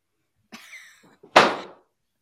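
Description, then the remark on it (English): A voice imitates a door: a short, wavering creak gives way to a single loud, abrupt slam-like burst that quickly fades. Nobody speaks; the sounds stand alone. “Yeah, like an angry door slam.”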